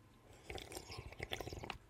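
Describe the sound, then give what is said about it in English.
Someone drinks water: a quick series of wet sips and swallowing gulps with small liquid clicks, fairly soft and irregular in rhythm, with no talking. “Sorry, I have to drink water because I need water.”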